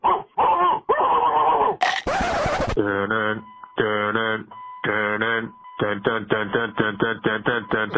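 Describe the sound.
Loud, close dog-like barking, probably a human voice imitating a dog, starting with a few longer yelps and whines and then breaking into a quick, rhythmic run of short barks.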